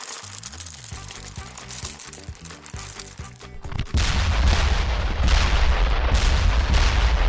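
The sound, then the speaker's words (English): Exploding jelly beans being eaten go off with a sudden loud burst about halfway through, then continue as a dense, crackling, rumbling roar, after a quieter opening of tonal, rhythmic sounds. “Like cardboard, but cardboard that's also exploding. Tastes like cardboard, check. Explodes as planned, check.”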